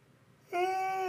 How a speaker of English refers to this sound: Yawning. Woke up late today. Still didn't get enough sleep.